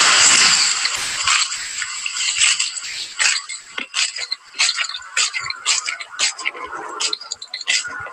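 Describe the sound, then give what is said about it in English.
Chocolate chip cookies being crunched, a steady run of crisp, crackly bites and chews in irregular bursts, fairly loud and bright, with no talking over it. “Those were chocolate chip cookies.”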